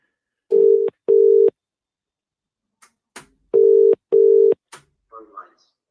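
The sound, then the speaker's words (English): A telephone line rings out with a steady double-burst ringback tone, repeated twice, with faint line clicks between the rings and a brief murmur of a voice at the very end. “Let's go back to the phone lines.”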